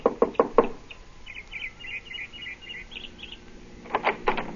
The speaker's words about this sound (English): I got her home address and knocked at the door of her small house 15 minutes after she arrived home that evening.